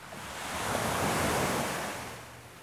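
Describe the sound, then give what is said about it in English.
A broad wash of ocean surf swells up and then recedes, a steady hiss of breaking waves peaking midway before easing off, with no voices present. “The sea is so large, and we're so small.”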